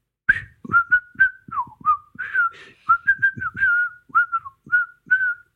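A person whistles a short, lilting tune, a string of clear notes in quick phrases with brief breathy gaps, some notes sliding and bending in pitch.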